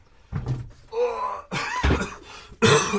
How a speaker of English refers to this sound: still coughing as always, but getting there.